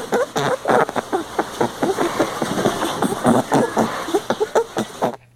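A rabbit shuffles and wallows around in bedding, making dense, irregular rustling and scratching bursts that keep up steadily for several seconds before stopping abruptly.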